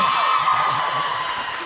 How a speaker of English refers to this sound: I'll tell you what, if you guys are excited about that, cheer right now. Let's do it.